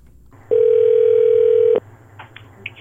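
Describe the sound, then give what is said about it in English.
A single long ringback tone from a phone line on a prank call to a veterinary hospital, steady and loud for just over a second, then it cuts off into near silence with faint background noise. “We've recorded a bunch of those, and we want to use them in our prank call today, right?”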